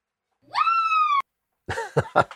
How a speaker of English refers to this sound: I heard it in the distance. I heard that scream.